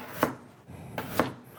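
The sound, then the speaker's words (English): Two crisp knife chops through potatoes on a cutting board as they are cut into fries, about a second apart, each a sharp thunk with a brief ring, alone with no talking. “and then just like cut a lot of fries yeah.”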